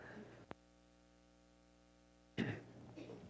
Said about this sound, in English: I'm going to cough for a minute.